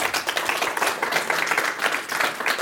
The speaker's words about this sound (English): We want to thank Dr. Carmen, Ari Carmen, whose new book is Building Democracy on Sand, Israel Without a Constitution. Please give a round of applause to Ari Carmen.